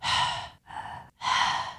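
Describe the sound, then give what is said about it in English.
A voice imitates heavy, creepy breathing into a phone in three loud, airy breaths: a long one, a shorter one, then another long one, each separated by a brief silence. “And he calls and the person answers the phone and they're just breathing into the phone like this.”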